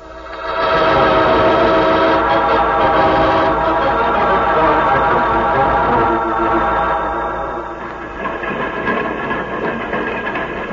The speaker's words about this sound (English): Train is slowing down so that we can jump off.